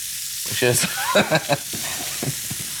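Filet steaks sizzle steadily in a hot pan, a dense, crackling hiss that runs throughout, broken by a few short, muffled voice-like bursts over the frying.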